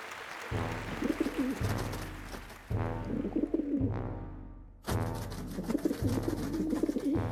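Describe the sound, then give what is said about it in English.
Pigeons coo in a steady, repeating rhythm as they waddle onto a stage in single file, ruffling their feathers, one low throaty coo rolling into the next with barely a pause. No voices, just the birds. “Pigeons are entering the stage single file. They're waddling in and ruffling their feathers one by one.”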